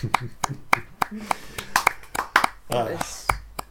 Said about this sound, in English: the justice sort of claps his hands.